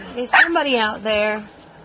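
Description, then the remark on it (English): A small female dog lets out two quick, high-pitched barks at something, the second drawn out slightly into a yelping tone, with quiet background afterward. “I need to check and see what she's barking at.”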